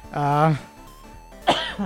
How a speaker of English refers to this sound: excuse me, I still have that silly cough, so please bear with me.